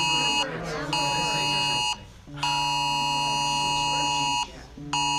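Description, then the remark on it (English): A phone blares a loud Amber Alert emergency tone, a harsh, buzzing electronic blare sounding in long bursts separated by brief pauses, with faint voices beneath it. “Amber Alert.”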